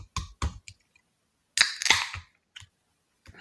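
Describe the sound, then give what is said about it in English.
A beer can is cracked open: a few sharp metallic clicks, then a loud pop followed by a short burst of fizzing hiss and a couple of faint clicks. No one speaks. “Pop a top, my friend.”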